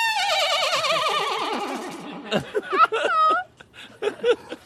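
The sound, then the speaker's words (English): A voice imitates a horse's neigh: a loud, quavering whinny that wobbles and slides downward for about two seconds, followed by a string of short, choppy vocal bursts. “It sounds like a horse.”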